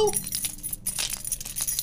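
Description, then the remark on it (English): A bunch of keys jangles, a quick, continuous run of bright metallic clinks and rattles lasting a couple of seconds. “You got your keys with you? Ha! You know I do!”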